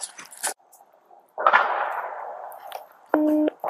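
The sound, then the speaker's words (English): A few sharp cracks of gunfire outdoors, a series of shots from a subject heard by police officers on scene, seemingly coming from a tan house to the east; the loudest one rolls into a long echoing tail, followed by a short electronic radio beep near the end. “There's active gunfire out here.”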